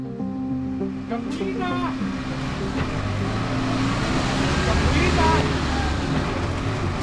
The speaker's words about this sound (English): Let's start by telling you about a problem involving that massive informal system of buses. They're called peseros.